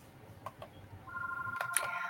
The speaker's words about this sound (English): Well, we're in the studio, but this is in real life. I don't know if you hear the phone ringing. This is the office of Novitas Bog Clinical Products.